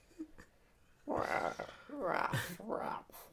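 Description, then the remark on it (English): A man's voice imitates Philip Seymour Hoffman as a dog with three strained, throaty bark-like yelps in quick succession, fairly loud, after a brief quiet breath. “That is Philip Seymour Hoffman as a dog.”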